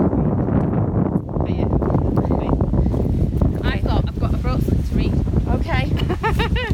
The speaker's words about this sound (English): Windy. It's a bit windy, but so we'll have a pause.